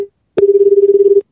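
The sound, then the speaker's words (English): A telephone call ringing: after a click, a single steady mid-pitched ring tone with a slight fast warble holds for under a second, loud and alone, with no voices. “Does that pick up?”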